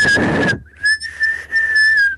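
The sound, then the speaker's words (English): A person whistles a long, steady high tone, trying to hit 2600 hertz, that wavers slightly in pitch and dips in loudness a couple of times. A short burst of breathy rushing noise comes before it. The whistle is fairly loud. “Can you whistle 2600 hertz first?”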